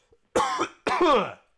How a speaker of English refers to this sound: I got a cough.